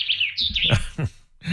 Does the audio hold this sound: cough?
no